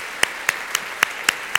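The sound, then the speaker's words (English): Applause for foster carers and adoptive parents, in the form of six sharp, evenly spaced hand claps at a steady, brisk rhythm over a faint background hiss, with no voices. “Do you know, I think we need to give them a round of applause.”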